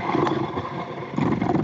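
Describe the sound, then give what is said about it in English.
A motorcycle engine roars steadily for a second and a half, a loud, rumbling low growl that briefly dips before surging back up toward the end. “Somebody has a motorcycle in their room?”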